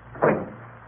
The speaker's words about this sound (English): Close the door.